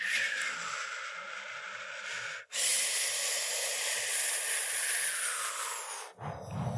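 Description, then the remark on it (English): Steady, breathy rushing of wind past a single tree 20 miles away, a broad hiss that holds an even loudness, breaks off briefly twice, then swells back. No voices. “You're now listening to wind moving past a single tree 20 miles away.”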